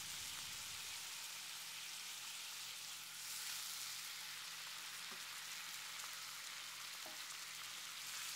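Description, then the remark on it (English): Steady, hissing sizzle of food frying in a pan, a dense crackling wash that holds evenly throughout, with a few faint clicks and pops and no talking. “Such a beautiful sizzling sound.”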